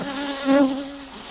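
A housefly in the W4CY studio buzzes steadily with a droning, harmonic-rich hum that swells briefly louder mid-way, then settles back to an even whine. No voices are heard.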